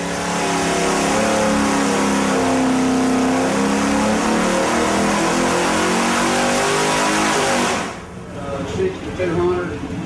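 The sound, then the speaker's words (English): A powerful Pontiac Super Duty V8 engine, factory-rated at 405 horsepower, roars at full throttle, loud, its pitch climbing steadily for several seconds before the revs drop away abruptly near the end. “Well, it's time to put the pedal to the metal and see if the Super Duty is still super.”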